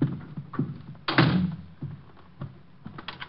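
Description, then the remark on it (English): A door thuds shut with a solid thump, followed by a few small metallic clicks and rattles as the door is locked. No voices are heard. “I'm locking the door. I don't want anyone coming in.”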